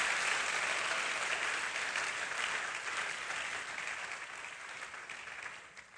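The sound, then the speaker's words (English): A crowd claps steadily, a dense wash of many hands that holds strong for several seconds before easing off slightly toward the end, with no voices rising above it. “Then clap for God if you want to.”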